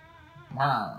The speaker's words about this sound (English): I even play with my cat for a little while. What'd you say, Migo? What are you... Meow? Meow?